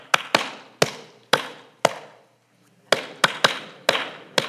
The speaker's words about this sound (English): Okay, I'm going to clap the melody of a song. I'm not going to sing the song, but I want to know if you can catch the melody by my clapping.